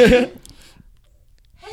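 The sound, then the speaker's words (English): A single sharp, explosive sneeze bursts out at the very start, then fades into near silence with only faint rustling before a soft voice begins at the end. “Bless you.”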